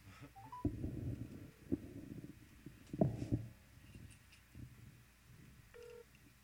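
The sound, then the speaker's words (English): A few short electronic phone dialing tones as a phone call is placed, one early and another near the end, sounding faint over a low, muffled rumbling background. “Are you calling him?”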